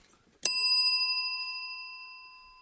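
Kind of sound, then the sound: signal or alarm, bell being rung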